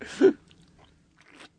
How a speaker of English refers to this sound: Oh, that was a good sip noise.